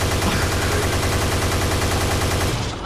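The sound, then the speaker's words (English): A loud burst of rapid automatic gunfire from a gunshot sound effect played for shooting a cow, shots running together in a dense rattling stream for nearly three seconds before trailing off at the end. “I got new gunshot sound effects loaded up, but I think it might have been a little extreme for shooting the cow.”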